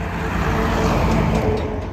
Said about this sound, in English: While the neighbors await an answer to their petition, they watch the dust rise off the landfill and the trucks drive down their street.